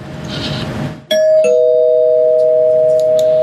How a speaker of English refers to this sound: That's the spoiler. I'll ring the spoiler bell. Hold on.